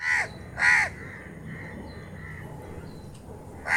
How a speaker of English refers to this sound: Let's hear them. First, the house crow.